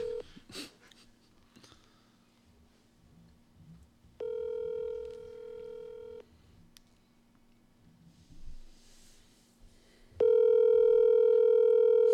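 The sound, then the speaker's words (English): A phone ringback tone repeats as a call goes unanswered, with steady two-second electronic rings separated by long pauses and faint room noise and breathing in between. “You know who's really bad at answering his phone?”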